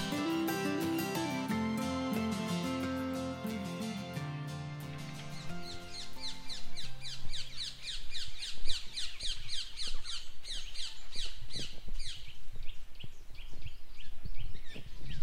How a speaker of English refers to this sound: Alrighty, so it is one of the most bizarre things to walk through a busy, built-up metropolis like London and to hear tropical parrots screaming overhead. So ring-necked parakeets are not native to the UK, but they have managed to adapt tremendously